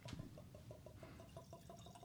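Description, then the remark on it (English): Ardbeg Drum whisky poured from a bottle into a glass, a quick, steady run of soft glugs, fairly quiet, with no talking over it. “Well, I'm pouring while you're looking.”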